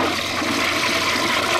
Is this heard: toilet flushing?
yes